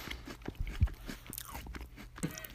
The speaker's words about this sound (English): I'm going to eat this Oreo that we're not doing a free ad for. You can listen to me, ready? It's a cookie.